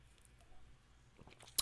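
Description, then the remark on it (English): A quiet sip from a Baja drink: soft wet mouth sounds build up and end in a sharp little click, with no one talking. “I have not had one sip of this Baja, by the way.”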